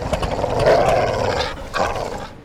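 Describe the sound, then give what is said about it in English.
A dog growls and barks, loud and rough, in two drawn-out bursts with a brief pause between them and no one talking. “Good dog. No, great dog.”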